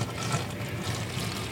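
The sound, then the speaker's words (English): Milk past its sell-by date pours steadily down a sink drain in Montana, a continuous splashing and gurgling stream that runs at an even level for the whole moment, with no voices. “In Montana, a sell-by date is a throw-away-by date or a pour-down-the-drain date.”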